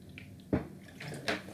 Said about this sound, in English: Sorry, guys. Gotta stay hydrated. I drink a lot of water.